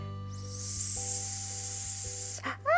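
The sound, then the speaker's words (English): A person makes a long, steady hissing sound imitating a snake, lasting about two seconds, fairly loud, followed by a brief vocal noise as it ends. “It's a snake.”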